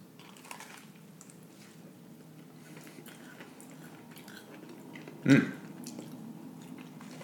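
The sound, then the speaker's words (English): Soft, steady chewing of beef empanadas made with coriander seed, raisins, olives and hard-boiled egg, with quiet wet mouth sounds, broken by one sharper, louder bite or crunch near the end. No one speaks. “So, shall we taste?”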